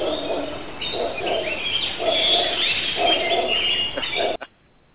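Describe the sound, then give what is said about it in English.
Jungle ambience thick with overlapping bird calls: low hooting, cooing notes repeat in steady pulses beneath a busy layer of higher chirps and trills, loud throughout, then cutting off abruptly near the end. “Just give everybody a feel for the jungle.”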